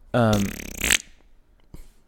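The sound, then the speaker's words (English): A person makes a loud, sputtering fart-like noise with their mouth, imitating a time-travel effect: a buzzy raspy burst lasting about a second, followed by a short pause and a faint breathy tail. “What if tearing space-time sounded just like a galactic fart?”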